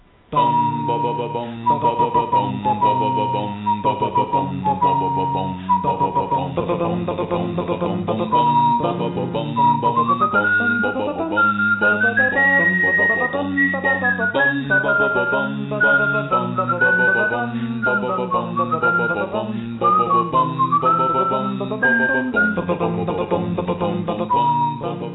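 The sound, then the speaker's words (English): An a cappella rendition of the Legend of Zelda Overworld theme, with layered voices carrying a bright lead melody over rhythmic vocal bass and harmonies, sung steadily and loudly for the whole stretch without speech. “So we're going to play the Legend of Zelda Overworld theme.”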